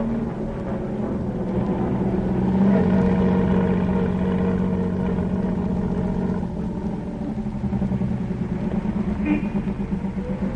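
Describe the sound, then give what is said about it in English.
A hired car's engine rumbles steadily, its low hum swelling slightly early on and then holding at an even, idling level for the whole stretch. “I say, jolly nice car.”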